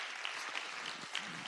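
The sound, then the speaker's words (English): A crowd applauds for Jesus one morning, a dense, steady wash of many hands clapping with no clear individual beats, holding at an even loudness throughout. “Come on, if you're going to give him a clap, give him a good hand clap this morning.”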